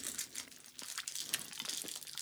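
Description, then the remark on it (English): Crunchy chewing of orange chocolate sweets, with crackly crinkling bites and munches running steadily for a couple of seconds and no talking. “We don't need more fucking chewing noises!”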